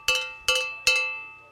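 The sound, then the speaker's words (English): A bright handmade metal bell, made for this type of music, is struck three times in quick, even succession, each hit sharp and clanging, leaving a clear ringing tone that carries between strikes and lingers after the last. “The bell has to be bright like this.”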